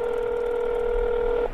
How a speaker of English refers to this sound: I froze as my phone rang.